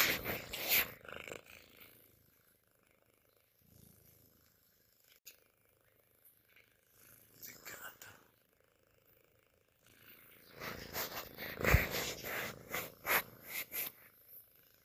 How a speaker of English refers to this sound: Can y'all hear her purring? I'm gonna get down closer.